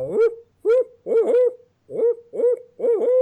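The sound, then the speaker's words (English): A person hoots like an owl with their natural voice, recorded on a cell phone camera in selfie video mode, giving about six or seven loud, wavering hoo calls in quick uneven bursts with short pauses between them. “I'm pressing record and I am going to hoot like an owl.”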